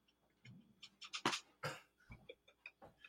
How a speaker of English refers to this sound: And I gotta apparently close my window because there's like dogs barking. Yeah, I was about to say, it sounds like there's a dog fight outside.